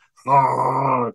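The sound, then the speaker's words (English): A single voice holds a long, buzzy rolled R for about a second, a rapid fluttering trill at steady loudness that imitates an engine revving, then stops abruptly. “I don't know how they put the, they make the R just sound like it's an engine revving up.”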